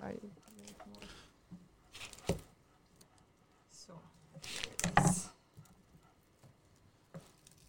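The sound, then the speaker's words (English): Wet al dente pasta is tipped from a cooking pot into a frying pan, with a few squishy slaps and clatters in short bursts. Voices talk quietly in the background. “So here we have now transferred the al dente pasta from the pot into and the frying pan.”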